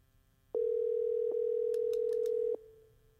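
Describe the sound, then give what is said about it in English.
A phone's outgoing ringing tone sounds once, a steady mid-pitched hum lasting about two seconds, with a few faint clicks over it before it cuts off into a quiet fade. “Honestly, he doesn't know that I'm calling him, so this should be interesting.”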